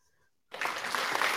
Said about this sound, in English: He's too busy trying to find the clapping click sound.